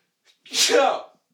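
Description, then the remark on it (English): A single loud sneeze: a faint quick intake of breath, then a sharp, breathy, voiced burst that trails off after about half a second. No one speaks. “I almost sneezed.”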